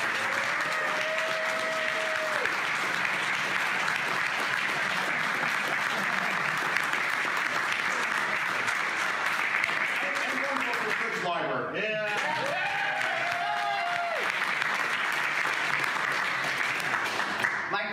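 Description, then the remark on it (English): Sustained audience applause for Michael Curtis fills the whole stretch, a dense, even wash of many hands clapping at steady loudness, with brief whoops or cheers rising above it now and then. “And as some of you know, let's just round of applause for Michael Curtis.”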